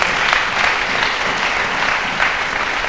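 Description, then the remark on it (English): An audience applauds together for the Lord, a steady, dense wash of many hands clapping at even loudness throughout, with no voices standing out above it. “Acclamons le Seigneur. Let's pour ce clap prix. For the Lord.”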